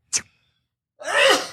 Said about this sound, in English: I'm going to sneeze. Here goes. Ready?